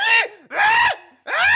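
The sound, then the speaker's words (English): A voice mimics a blaring car alarm with three loud wailing bursts, each swooping in pitch and separated by short gaps, no other sounds around it. “It starts screaming this horrible sound.”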